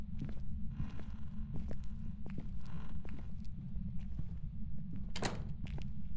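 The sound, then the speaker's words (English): Muffled footsteps thud and tap at an uneven pace right outside a door, over a steady low rumble with no voices. “I hear footsteps too. It's right outside my door.”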